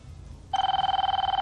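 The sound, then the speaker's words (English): A telephone starts ringing after a moment of quiet, a loud, steady electronic trill with a fast warbling pulse that continues to the end without any voices. “Okay, so it looks like there is a phone call coming in.”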